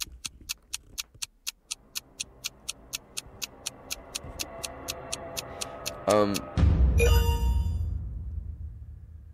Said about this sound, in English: Oh God, that clock scared the fuck out of me.